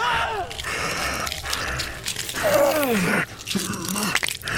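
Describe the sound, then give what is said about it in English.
Continuous wet crunching and chewing, like flesh being torn and slurped, mixed with low groaning, gasping vocal sweeps throughout, with no talking. “Yeah, so like all of a sudden, in addition to porn noises, there's a bunch of yelling and screaming. And crunching and tearing of flesh. Slurping, yeah.”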